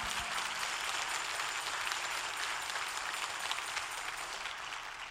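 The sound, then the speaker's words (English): A church audience gives a rousing applause to a member standing up, many hands clapping together in a dense, continuous wash of sound that stays fairly loud throughout, with no one speaking over it. “Stand up and let's give her a rousing applause.”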